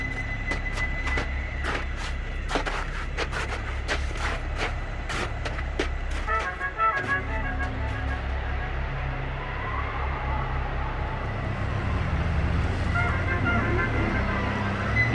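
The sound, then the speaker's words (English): A jeep engine rumbles steadily with several sharp clacks and knocks over the first few seconds, then the motor note shifts and rises as the vehicle pulls away. No one speaks. “We'll take my jeep.”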